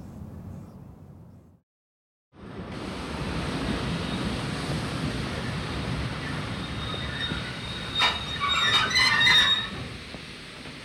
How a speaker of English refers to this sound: Train standing at platform 2 is the 736 to Birmingham.